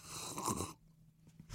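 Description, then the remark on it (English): Soft slurping sips from cups as several people take a sip together, one cup with Nebraska Cornhuskers on it and one with Grumpy Cat: a breathy, hissing draw of about half a second, a short quiet pause, then the start of another sip. No one talks. “We're all going to take a sip.”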